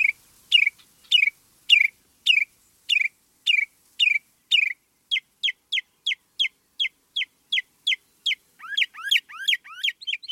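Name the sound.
northern mockingbird singing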